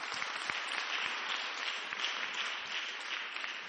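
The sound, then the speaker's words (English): An audience claps steadily for a prophet: a dense, even wash of many hands with no clear beat, holding at a fairly constant level for a few seconds. “Clap for prophet.”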